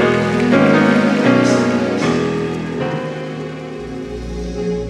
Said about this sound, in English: Clap your hands for him.